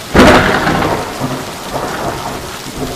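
A loud crack of thunder breaks at the start and rolls into a long, low rumble, with steady heavy rain hissing throughout.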